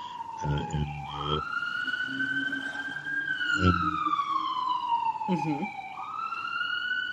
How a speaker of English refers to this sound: You have sirens there.